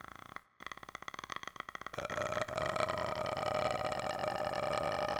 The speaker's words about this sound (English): Vocal fry. Just frying some vocals.